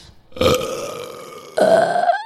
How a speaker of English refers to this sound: I can't do it. I have no burps to give out.